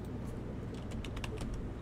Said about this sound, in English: Wait, where am I typing? Not up here.